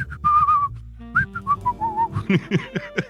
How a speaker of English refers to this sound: Whistling Dixie down the fucking street like it wasn't a thing.